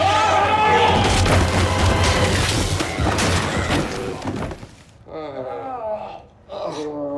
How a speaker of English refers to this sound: Yes, so George crashes into the guys in his little scooter thing. Boxes fly everywhere.